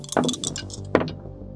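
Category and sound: household object, dice being rolled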